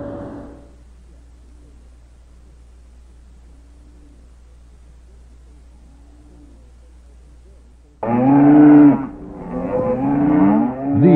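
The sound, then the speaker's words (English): After a long quiet stretch with a low background hum, thirsty cattle during a drought break into loud, drawn-out moos, two bellowing calls filling the final few seconds. “Are some very thirsty cows.”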